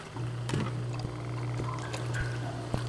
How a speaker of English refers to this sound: what's the dripping? The sump pump? Turn it off. The basement will flood.